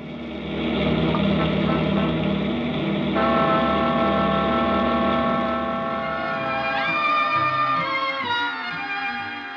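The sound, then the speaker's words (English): A cross-country motor bus engine, oil checked and tank full, rumbles steadily, then revs with a rising whine toward the end, with no voices heard, in a Lux Radio Theater production of It Happened One Night. “Lux Radio Theater, the cross-country motor bus stands waiting. The oil is checked, the tank is full, and we're ready to start.”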